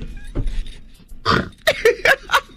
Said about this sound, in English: Who just snorted?